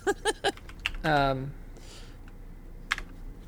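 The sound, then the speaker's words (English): Several crisp computer keyboard taps clatter at an uneven pace as someone types to listen to a song, with a short vocal sound in the middle and a single stray keystroke near the end over faint background noise. “That was me typing to listen to this song.”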